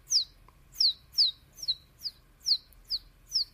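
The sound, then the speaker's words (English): A person imitates a baby bird with a run of about seven high, thin chirps, each a quick downward-sliding peep, repeated at a steady rhythm with no talking. “Did you just figure out you could do that? Is that a little baby bird?”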